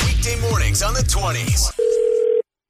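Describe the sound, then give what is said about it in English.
A short, busy burst of sliding electronic tones gives way to a single steady telephone ringback tone as a prank phone call connects, loud, lasting under a second before cutting off. “It's your phone tap right now. It's another phone tap.”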